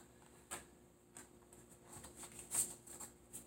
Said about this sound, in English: These are some stiff cards. Woo! Okay, and this is from the Tarot Grand Lux tarot card deck that I'm just shuffling through right now.